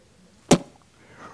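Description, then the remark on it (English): A single sharp spitting noise made with the mouth, a quick imitation of spitting out chewing gum that has lost its taste rather than the real thing, followed by quiet with faint low background noise. “I didn't really spit, by the way.”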